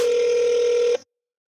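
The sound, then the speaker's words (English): A single steady ringback tone from an outgoing phone call to the Wing It On restaurant, a flat mid-pitched electronic buzz lasting about a second before cutting off into silence. “Yeah, so we'll give them a buzz.”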